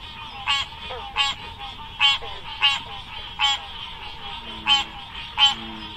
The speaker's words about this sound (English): But, well, I have to admit that I went through a lot of sound files of American green tree frog calls, and this one was the most, quote, bell-like, unquote, that I could find.